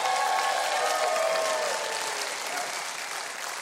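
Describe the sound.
Sustained audience applause, a dense, steady wash of clapping that stays loud throughout and tapers only slightly toward the end, with faint crowd voices mixed in.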